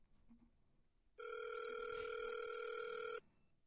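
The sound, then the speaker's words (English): A single steady electronic ringback tone from a phone line on an outgoing call lasts about two seconds and then cuts off, fairly loud and clear over faint background noise. “Dude, just answer the fucking phone.”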